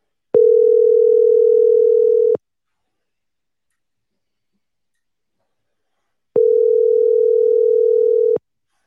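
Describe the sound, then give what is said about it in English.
An outgoing phone call's ringback tone: two steady, fairly loud electronic tones about two seconds each, separated by a few seconds of silence. No one speaks. “I'm calling from my podcast phone.”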